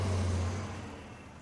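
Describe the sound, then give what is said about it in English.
An express bus speeds past, its deep engine hum and road noise loud at first, then quickly fading as it moves away. No voices. “I looked back at him, and I watched as the express bus sped by us, continuing on its way uninterrupted.”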